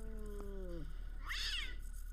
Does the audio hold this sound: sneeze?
no